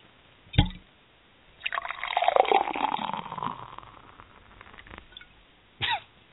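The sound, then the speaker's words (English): A drink is poured in one steady stream lasting a few seconds, framed by a short knock or clink just before and a quick sharp sound right after. No one speaks. “How to pour another drink.”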